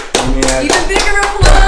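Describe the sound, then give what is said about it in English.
Audience applause with loud, steady clapping in repeated bursts, with voices calling out and cheering mixed through it. The applause stays strong and builds slightly toward the end. “Even bigger applause.”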